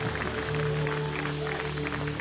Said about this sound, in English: Come on, let's give him a shout, church. Let's give him an applause that's worthy of his name.